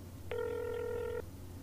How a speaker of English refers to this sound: I'm gonna give the landlord a call to see if it's some kind of plumbing thing. Okay. It's ringing.